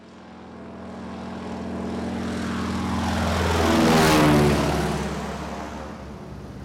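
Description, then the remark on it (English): A propeller airplane engine in flight, heading for Black Rock off the coast after leaving New York, drones steadily, building in loudness as it passes overhead around the midpoint, with a harmonic whine that shifts pitch before easing off slightly at the end. “I hope we reach it before it gets too dark to land the plane.”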